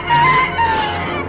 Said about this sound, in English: Wikipedia calls that thing a sand bat. It crows like a rooster, but it's a sand bat.